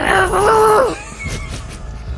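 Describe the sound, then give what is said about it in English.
A person imitates an elk call with one loud, drawn-out vocal cry that holds a high, strained pitch for nearly a second before dropping off, followed by quieter murmuring. “Can we get an elk noise?”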